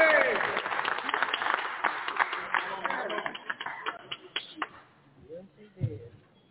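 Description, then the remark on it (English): A church audience claps by hand for the kids in a dense, steady burst of applause that thins out into scattered claps and stops after about four seconds, leaving a few faint voices. “Come on, give the kids another hand clap.”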